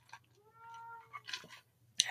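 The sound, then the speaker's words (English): A cat lets out a drawn-out, wavering meow, followed by a few short scuffling and clattering noises, with a steady low hum underneath and no talking. “My cats are driving me insane.”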